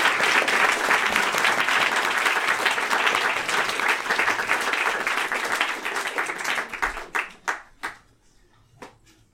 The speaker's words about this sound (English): But first, a warm round of applause for our special guest,